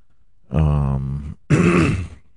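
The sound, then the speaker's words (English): A drawn-out, groaning yawn from one tired person on a rainy day, a long voiced exhale followed after a short pause by a second shorter, breathy rise, with no speech. “Sorry about if I'm yawning.”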